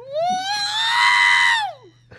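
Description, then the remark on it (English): A single high, sustained electronic-sounding scream from a voice imitating the R2-D2 robot scream, rising sharply, holding steady, then sliding down at the end, loud over a faint low hum. “Well, he's doing the R2-D2 scream.”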